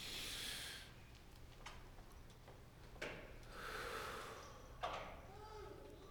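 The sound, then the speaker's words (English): Soft, airy breaths drawn in and let out slowly from the diaphragm, a gentle hiss rising and fading, with a few faint clicks in otherwise quiet surroundings. “So when you breathe in, you feel your tummy go out. We're breathing from our diaphragm.”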